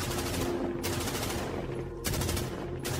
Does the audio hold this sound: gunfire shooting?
yes